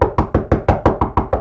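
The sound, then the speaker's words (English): Rapid, insistent knocking by people on a door, about nine loud, evenly spaced raps in quick succession, with no voices. “That's what you're going to hear. People knocking on your door.”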